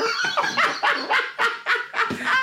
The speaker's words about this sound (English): My dog is terrified and stressed. Then the lad who he's played rugby with went, the dog's going nuts.